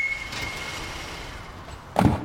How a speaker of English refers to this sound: Aha! Did you hear the squeal of the brakes and the thump of the car door? Onomatopoeias all around us.